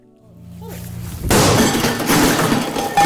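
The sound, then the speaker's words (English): A loud crash of glass shattering bursts in after a low rumbling buildup as glass is smashed in a rage room at a business called Outrage in Kennesaw, Georgia, followed by a sustained bright spray of breaking shards and tinkling debris. “Georgia got its newest rage room last year, also called smash rooms or anger rooms.”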